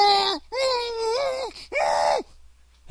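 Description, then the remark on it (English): A voice lets out three drawn-out, muffled mock screams in quick succession, fairly loud, each a strained, wavering wail with brief pauses between, and no other talk. “But that, you know, those beautiful blue eyes looking up at you and that muffled scream, you're going to beat that?”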